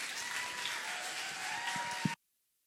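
A crowd applauds steadily, a dense wash of clapping that holds at an even, fairly loud level for about two seconds before stopping abruptly into silence.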